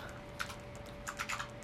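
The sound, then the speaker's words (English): Computer keyboard typing: a few sharp, clacky keystrokes in two quick bursts, with a steady faint hum underneath and no voices. “You have the loudest keyboard.”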